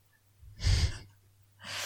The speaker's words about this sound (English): because it's, like, your microphone is one that is directed in, like, pretty much one direction. So it's picking up your voice okay, but I'm worried that it's doing what it did last time, which is to also really pick up your breathing when you laugh.